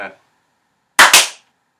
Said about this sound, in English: Wait, do we have to clap? Yeah, we can clap.